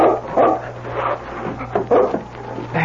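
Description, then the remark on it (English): A dog named King gives a series of short, high barks and yips in uneven bursts over a steady low hum, with no one speaking. “If only his eyes got better in time, he could find out at the roadhouse if this were the dog he thought it was.”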